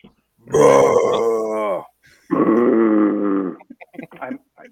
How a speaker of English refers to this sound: It just sounds like I'm growling, like I'm Shrek and I'm angry. My dog just perked up. Like, what was that sound?